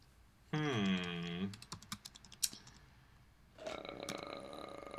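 Rapid, irregular clicking of computer keyboard typing for a couple of seconds, preceded by a loud, low burp-like vocal sound and followed by someone talking.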